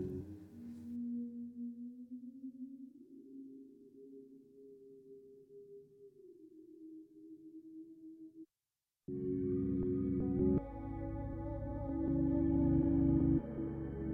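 A song with effects-processed vocals plays, starting with a quiet, low droning passage, then a brief dropout before the track bursts back in loud, dense and full.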